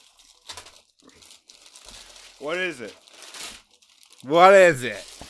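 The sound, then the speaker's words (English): Wrapping paper on Christmas gifts crinkles and rips in several quick, scratchy bursts as the gifts are opened, with two high, excited voices exclaiming over the rustling. “Let's open some gifts.”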